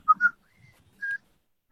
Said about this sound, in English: All right. I whistle out the window again.